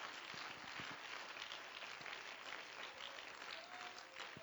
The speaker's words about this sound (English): Oh, clap your hands and let's give praise to Him.